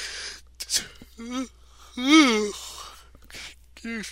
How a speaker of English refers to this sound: Excuse me. Yawning there.